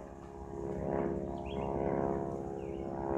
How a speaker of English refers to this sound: I guess you guys can hear the plane above. We got an airport just right nearby us. It's one of those one airports that don't. There's just local traffic. It's nothing big.